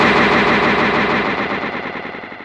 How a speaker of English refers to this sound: Just wanted to know if the echo continued.